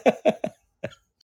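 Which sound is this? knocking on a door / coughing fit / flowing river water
coughing fit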